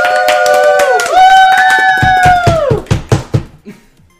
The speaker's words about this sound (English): So, I want you all to put your hands together and give one last applause to our queens and their challengers. Woo!